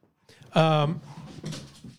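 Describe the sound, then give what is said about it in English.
A dog named Mabel lets out a loud, drawn-out whine, then keeps fussing with softer whimpering noises for about a second. “Mabel's freaking out.”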